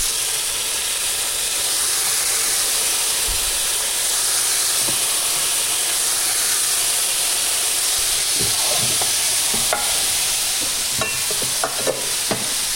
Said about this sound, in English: The pan's now nice and hot, so I'm going to just drop the pieces of chicken straight into it, making sure I leave lots of room for all the chicken.